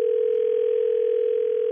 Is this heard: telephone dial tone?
yes